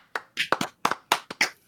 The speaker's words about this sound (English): This has been a great show, everybody. Let's clap it out.